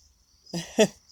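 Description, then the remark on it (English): A female hummingbird gives two quick buzzy bursts, the second a sharper chirp, fairly loud, over a faint steady high-pitched hum in the background. “Oh, did you hear her? She buzzed and chirped.”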